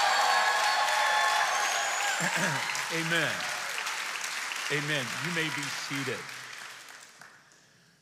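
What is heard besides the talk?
audience clapping and shouting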